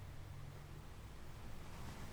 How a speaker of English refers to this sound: Looking out to the horizon and watching those waves crash on the shore and recede back. This beautiful rhythm mirrors your own.